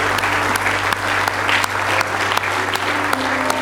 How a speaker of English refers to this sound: Give the Lord a good hand clap of praise this morning.